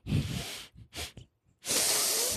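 A series of close, airy nasal sniffles: a long breathy pull, two quick short sniffs, a pause, then another long hissing inhale, with no talking.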